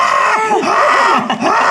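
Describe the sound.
A voice imitates a creature's shrieking, screaming laugh as an audio cue, loud, with wavering high-pitched cackles sustained for under two seconds, no talking.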